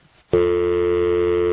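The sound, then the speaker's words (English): A telephone dial tone switches on after a brief quiet moment and holds steady, a loud continuous hum heard over a phone line with no talking. “Well, another dial tone. Dial tone in the Kiva.”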